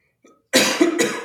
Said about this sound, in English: Sorry about that, guys. No worries. We all cough sometimes, but coughing's a different Pokemon, so I'd ask you to stop.